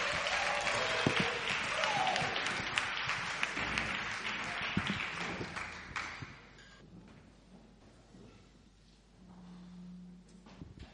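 A loud, dense burst of clapping from a crowd fills the first six seconds, then thins out and fades, leaving scattered claps and quiet room noise.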